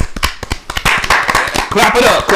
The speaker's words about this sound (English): Special guest, ladies and gentlemen. A round of applause.